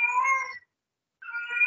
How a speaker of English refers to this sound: That damn cat. Hold on. I don't like people to cat. No, the cat is in heat. Go upstairs. The cat is in damn heat.